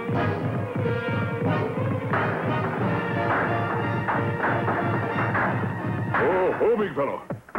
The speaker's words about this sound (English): That sounds like gunfire.